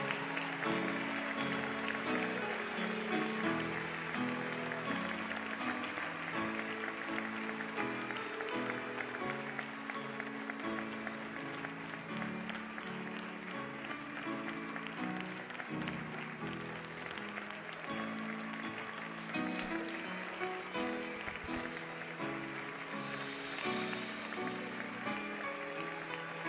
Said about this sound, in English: As they come forward, let's give a round of applause. Let's praise the Lord for these new members into St. Matthews.